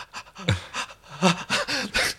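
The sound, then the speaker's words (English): A person imitates rapid, shaky panting, acting out film characters paralyzed and quivering after being teleported to the Thermian home base: about seven quick, breathy gasps in a steady, trembling rhythm, fairly loud, with no other talking. “Teleport, and they're just sort of paralyzed and quivering and breathing like they're...”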